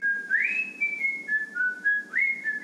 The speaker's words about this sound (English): Look how good I can whistle. Wow, you're good. You're a good whistler,